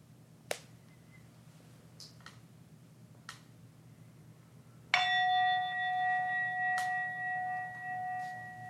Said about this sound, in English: And then once again, you can begin to bring your attention back to this room, to this space we're in, listening for the fading sound of that bell to invite you to open your eyes back up.